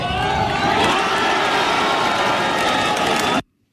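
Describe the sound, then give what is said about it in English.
A large golf crowd in Madrid roars and cheers after John Rahm's winning putt at the Open de España, a loud, sustained wall of noise with shouts of "Viva Sebi" mixed in, holding steady for over three seconds before cutting off abruptly. “That was the yell from the background. So this was John Rahm's winning putt at the Open de España in Madrid.”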